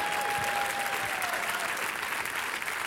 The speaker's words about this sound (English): I want to say hallelujah to all of our emerging leaders. Come on, somebody clap for them.